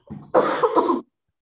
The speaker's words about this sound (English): And I feel like, sorry, I'm going to cough again.